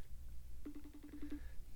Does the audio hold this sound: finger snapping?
no